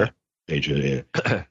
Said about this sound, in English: Clear my throat here